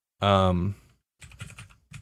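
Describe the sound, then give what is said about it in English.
A short burst of clicky computer-keyboard typing, quick irregular keystrokes, following a brief voiced hum at the start. “And you can hear my typing. I know you can. Clicky clack.”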